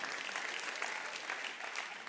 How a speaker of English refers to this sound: Thank you for those two claps.